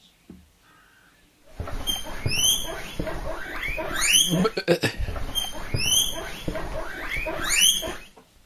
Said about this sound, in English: Guinea pig.